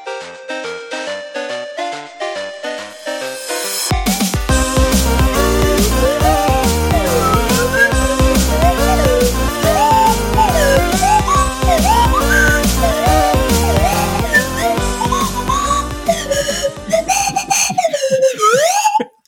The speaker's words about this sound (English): I've never actually played the slide whistle in front of anybody before, and wow, it's actually really embarrassing.